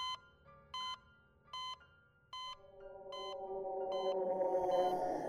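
Hospital machines beep in a steady, evenly spaced rhythm of about seven short electronic tones, while a droning, shimmering wash gradually swells louder underneath. No one speaks.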